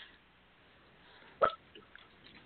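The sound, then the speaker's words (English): A single sharp hiccup jumps out of a quiet background midway through, brief, with only faint room noise before and after. “Bless you for the hiccups.”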